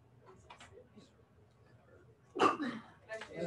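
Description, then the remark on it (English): A single loud, sharp sneeze bursts out after a stretch of quiet, low murmuring talk, followed by a brief breathy tail. “Bless you.”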